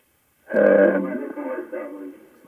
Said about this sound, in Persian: بی زحمت تلویزیونتون رو خاموش کنید، با تلفن صحبت.